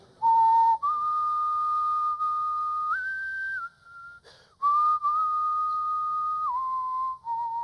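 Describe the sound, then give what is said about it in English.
Someone whistles a slow, steady tune alone, holding long sustained notes that step up and down in pitch, with a brief breathy pause midway before the melody resumes. “That's the one that came to my mind because I'm thinking about whistling, but.”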